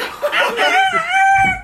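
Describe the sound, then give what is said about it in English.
A person imitates a rooster's crow with one drawn-out, rising and falling cock-a-doodle-doo, loud, with a hint of laughter in the voice. “or he's gonna just still sense what time it is, be like a universal clock, but at 6 a.m. he has to crow.”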